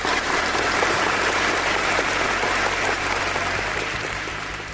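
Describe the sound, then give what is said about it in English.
A crowd applauds steadily: dense, loud clapping that holds for several seconds and then begins to fade slightly at the end, with no voices over it. “And if there are some frontline workers there at the Halloween party you're at, make sure to clap for them.”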